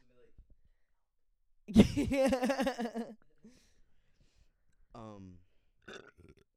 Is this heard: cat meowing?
no